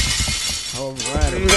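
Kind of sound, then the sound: sound effect, glass shattering sound effect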